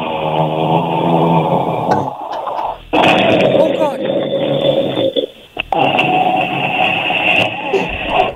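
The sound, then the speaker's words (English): A caller to Virgin Radio imitates loud snoring: long, rough, rattling snores with brief pauses for breath, sounding thin and band-limited like a phone line, with a short exclamation near the end. “I have the best snore ever.”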